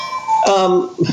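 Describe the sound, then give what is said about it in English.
A cuckoo clock in the background chimes with a few bright, ringing tones, a higher note dropping to a lower one, fairly loud and lasting about a second. “there's a cuckoo clock in the background.”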